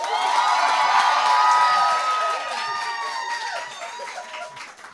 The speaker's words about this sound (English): clap your hands.